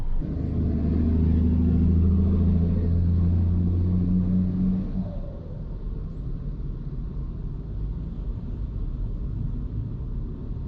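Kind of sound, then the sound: vehicle, car driving in traffic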